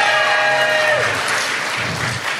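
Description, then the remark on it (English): A crowd claps steadily for a couple of seconds to show they have a library card, a dense, even patter of many hands, with a brief high whoop or whistle over the opening second. “Clap your hand.”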